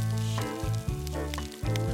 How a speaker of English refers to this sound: the first thing you'll hear on a coral reef is this backing track, if you like, of snapping shrimp